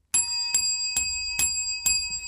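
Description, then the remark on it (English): A bell rings five times in a steady, even rhythm, each bright metallic strike ringing on until the next. It is fairly loud, with no voices. “Where's that bell?”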